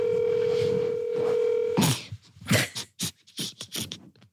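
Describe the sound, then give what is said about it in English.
A steady telephone dial tone hums for nearly two seconds as someone places a call, then cuts off into a quick run of clicking, scraping handset noises. “I feel like calling boys we know on the phone while we hang out is we've reached peak slumber party vibes.”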